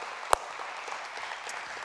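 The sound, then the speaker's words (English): Steady, fairly soft applause from an audience at the Mountain welcoming a new missions and outreach director, a dense wash of many hands clapping at once, with one sharper, louder clap standing out near the start and no voices. “Would you please give him a round of applause?”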